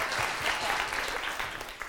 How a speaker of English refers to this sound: Can we have a round of applause for the strong panel, please? Yes.